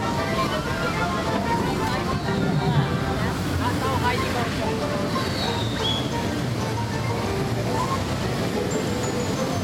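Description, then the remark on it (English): Steady, loud rush of churning water from a water ride in the Toon Lagoon area of a theme park, with water shooting out, spraying and splashing without pause, as faint voices murmur in the background. “Place they were talking about where you get soaked. Yeah. Well, look at the water right there.”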